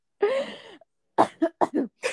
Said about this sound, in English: Bro, I literally sound like Frank Gallagher. I can't form a sentence without coughing.